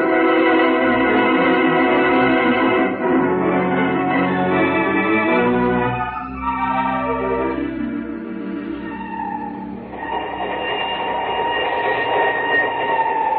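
A train bound for Timbuktu rolls steadily along the rails, a loud, continuous, enveloping rumble with droning mechanical tones that shift in pitch midway, with no voices.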